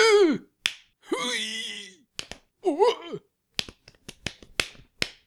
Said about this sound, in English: That's too many slaps in the dick right there.